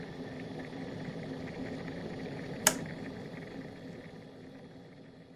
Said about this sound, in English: Right, gentlemen, I'm going to give you your note. I'm going to go for the note that my dishwasher is currently vibrating at, so it will seamlessly blend into the recording. So, that might be a bit high.